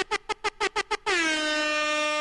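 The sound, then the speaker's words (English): A rapid string of six short air horn blasts followed by one long sustained blare, loud, with no voices. “Let's get some air horns.”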